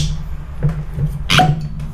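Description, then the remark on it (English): A cork pulls free of a tequila bottle with one short, bright pop, preceded by a faint softer click, all over a steady low hum. “Hear that pop.”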